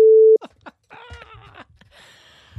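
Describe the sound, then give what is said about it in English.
A loud, steady single-pitch censor beep lasting about a third of a second, cutting off abruptly, followed by a burst of laughter and voices. “That that fake strawberry that I'm gonna beep that because it'll be funny. Beep.”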